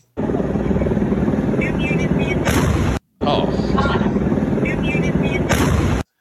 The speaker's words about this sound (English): Oh, yeah, this is that 3-second video from a camera, like right down the street of this explosion going off of fireworks.